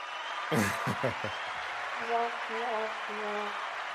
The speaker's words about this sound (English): I try to get the cheering on here, but I don't know how. I got to turn it up. There we go. There we go. Got the audience. Everyone's clapping.